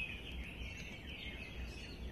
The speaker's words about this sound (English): listen to the sound of the birds. I don't have a clue what they're talking about.